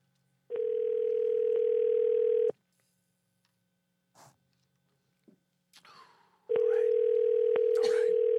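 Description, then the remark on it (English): A phone line rings on an outgoing call to a man from Tinder: two long, steady ringback tones about two seconds each, loud, separated by a pause with faint rustling and clicks. “The Tinder guys always answer.”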